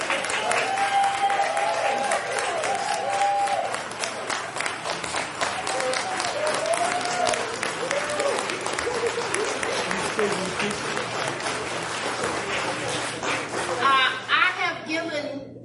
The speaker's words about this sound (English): All right, well, let's give our recipients a round of applause.